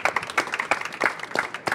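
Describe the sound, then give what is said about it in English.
An audience breaks into applause, a dense patter of many hands clapping at once, steady throughout with no voices on top. “Well, that also deserves a big round of applause.”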